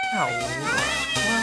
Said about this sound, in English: Should I just play, like an army of cats?